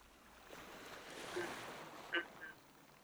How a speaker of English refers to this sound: listening to the sound of the waves.